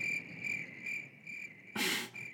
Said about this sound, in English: Haven't played the crickets in a while. Love it.